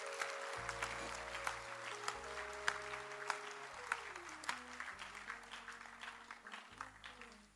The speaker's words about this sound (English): Clap again for the full-time ministry.